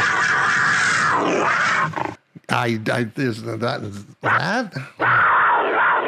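A mountain lion lets out a run of loud, wavering screeches and yowls in several quick bursts, with rough, hissing noise before and after the cries.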